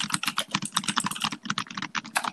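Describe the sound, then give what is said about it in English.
Rapid, clattering keystrokes on a clicky computer keyboard, a dense run of sharp taps with no talking over them. “The keyboard is very clicky, so you're about to hear me type a lot.”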